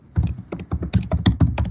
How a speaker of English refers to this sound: You typing, huh? Yeah, I'm sorry. I'm just trying to. What are you using? A ball peen hammer? Yes. Yes, I am. I type with purpose.